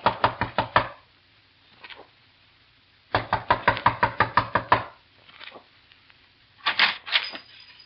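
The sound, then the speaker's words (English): Bursts of rapid, loud knocking on the door of a house during a visit, each a quick series of sharp raps separated by pauses, with fainter single thumps in between and a brief muffled sound near the end. “A knock.”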